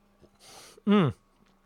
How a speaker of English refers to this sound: That's what we got on the beer. I'm gonna have another sip because it's delicious.